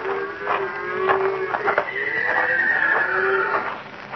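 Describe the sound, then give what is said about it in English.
At night on a trail down from a mesa top, a horse whinnies in long, wavering, high-pitched calls that fill the whole stretch, with a few hoof clops striking beneath them on the trail. “One of the horses must have walked down the trail a piece.”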